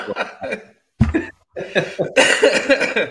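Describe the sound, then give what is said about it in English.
A person laughs in short bursts that break into harsh, hacking coughs, fairly loud, with a brief pause before another rough cough-laugh fit over about three seconds. “when I laugh, I cough now.”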